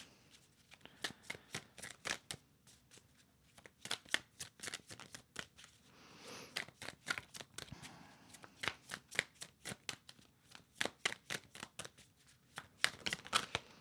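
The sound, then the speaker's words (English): Tarot cards being shuffled over and over to pull a single card, a long run of quick, crisp snapping and riffling bursts with short pauses between them, fairly loud and steady, with no voices. “A message from their higher self, from their soul. Just one card.”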